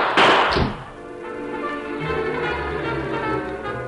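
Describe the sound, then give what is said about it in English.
A loud gunshot bursts out at the start, a sharp booming crack that fades quickly into a steady, low musical drone with no voices. “He immediately opened fire.”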